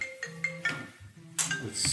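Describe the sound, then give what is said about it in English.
A mobile phone ringtone plays a short, bright electronic melody of repeated tonal notes, moderately loud, with a brief pause before a louder burst of notes, during the introduction of a talk on the future of the World Bank in Canberra. “It's not my phone, let me just say.”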